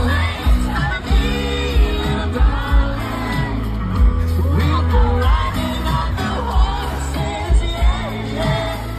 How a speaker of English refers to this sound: Did you hear all those young screams in the crowd?